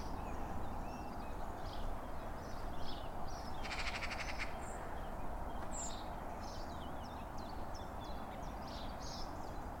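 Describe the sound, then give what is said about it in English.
A common chiffchaff, a migrant warbler, sings faint, repeated high chirping notes in a steady rhythm beside a canal on 26 February, set against a loud continuous rushing background noise outdoors, with no one speaking. “That's the earliest chiff-chaff I've ever heard.”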